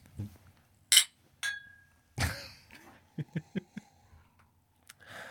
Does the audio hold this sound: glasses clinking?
yes